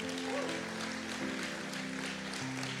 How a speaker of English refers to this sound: If you got that, why don't you give God a hand clap for the word this morning.